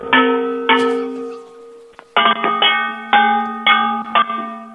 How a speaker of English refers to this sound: I've got a device hooked up to the phone. I'm measuring the frequency that the bangs make to make sure it's real copper. Can you just do like... Well, it is real copper. It's been tinned.